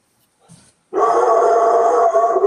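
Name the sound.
dog howling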